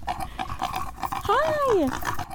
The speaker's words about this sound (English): introduced me to some of the animals, like Hank, a teeny pig.